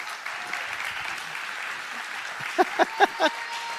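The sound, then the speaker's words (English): A church audience at North Point applauds steadily as Celebrate Recovery ministry leaders are brought out, a dense wash of clapping throughout, with a few louder, sharper claps or whoops standing out near the end. “Let's hear it for these guys.”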